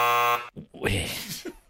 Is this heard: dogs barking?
no